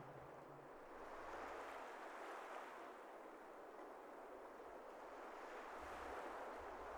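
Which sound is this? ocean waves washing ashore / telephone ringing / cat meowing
ocean waves washing ashore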